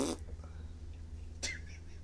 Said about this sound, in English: I don't think anybody's farts nowadays sound like that.